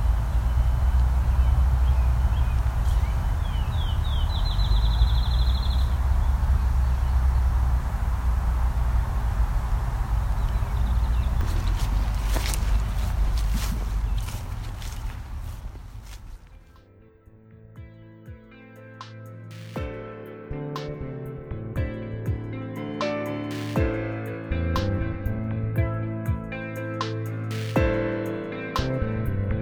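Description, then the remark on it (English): Field sparrows in a field; one gives one high, sweet song of whistled notes that speed up into a trill, faint over a steady low rumble; music takes over halfway through. “So now that we're in the field again, we can hear some field sparrows very clearly.”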